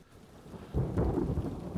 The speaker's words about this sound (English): Overhead. A little bit of thunder and lightning happens.